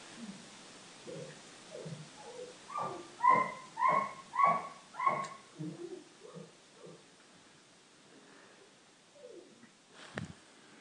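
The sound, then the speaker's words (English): A dog whimpers and yips softly, then lets out a quick run of four loud barks before settling back into faint whines and a last sharp yelp near the end. “He never barks. He's very calm. Ideal dog, really.”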